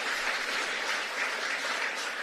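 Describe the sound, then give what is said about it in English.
A crowd applauds steadily, a dense, even wash of clapping that holds at a constant level for the whole couple of seconds with no voices over it. “Who's applauding?”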